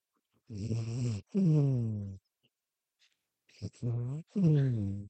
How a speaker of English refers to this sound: Meanwhile, listen to Willow snoring.